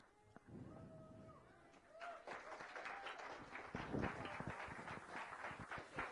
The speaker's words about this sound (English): Please, everyone, if you would give the cast another round of applause.